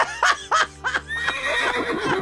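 A horse whinnies loudly: a few quick, shrill rising bursts followed by a long, shaky, descending neigh that trails off.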